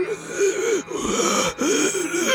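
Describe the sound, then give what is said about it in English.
A voice imitates a creature's labored, gasping breaths, three ragged rasping inhales in a row, fairly loud with strained, wheezy moaning tones. “It seems like it's trying to fill up its lungs with air, but it's just that, like, whatever maybe was left of its lungs has sort of maybe broken and is struggling to get any air through its trachea.”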